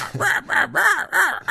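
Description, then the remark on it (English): A person imitates a griffin's harsh, crow-like cawing cry, repeating it four or five times in quick succession. The rasping calls are loud, with no other talking. “Griffins can't speak. I mean, just like every animal we do here, the animal speaks its own language that we are translating for you, audience.”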